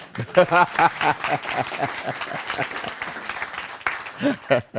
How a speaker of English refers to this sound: Can you clap for Jesus for that work?